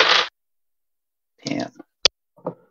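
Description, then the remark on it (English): Dice clatter across a tabletop in a few short bursts, with one sharp crisp knock in the middle and brief pauses between the rattles. “I need better dice.”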